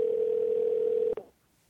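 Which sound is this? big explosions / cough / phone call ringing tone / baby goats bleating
phone call ringing tone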